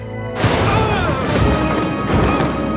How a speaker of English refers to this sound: and then when he was thrown free from the melee, he taps his communicator badge, and it triggers this improvised explosive